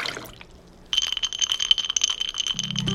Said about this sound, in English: glass, ice, pour.